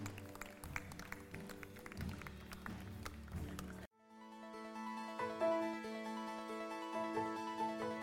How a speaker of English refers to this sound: Yeah, let's give the Lord a hand clap. Come on.